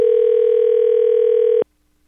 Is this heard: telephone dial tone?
yes